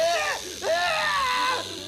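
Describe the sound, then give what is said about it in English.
A comedic snake hiss sound effect depicting a man using a snake as a necktie: a steady airy hiss layered with wobbly, swooping vocal squeals that rise and fall three times, fairly loud, like a voice imitating the snake. “A man using a snake as a necktie.”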